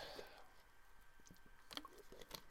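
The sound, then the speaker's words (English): Quiet sips of water: a few soft wet slurps and mouth clicks, followed by a swallow, with no talking. “Let me take a sip of water before I present this.”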